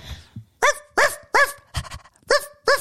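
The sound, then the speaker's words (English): A person does an impression of a small dog for others to name the breed, letting out about six short, high, yappy barks in quick, fairly even succession, loud with brief pauses between them. “Name the dog. I want the breed.”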